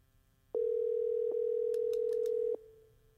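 A phone rings on an outgoing call: one steady, mid-pitched ringback tone lasting about two seconds, with a few quick higher beeps briefly over it. No one speaks.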